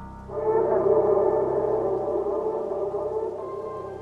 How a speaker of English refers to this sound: The forest went quiet for miles and miles across, and a howl descending from the highest mountaintops claimed that silence for itself.